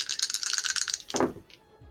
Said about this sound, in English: I'm going to roll my Bardic Inspiration die for one of those.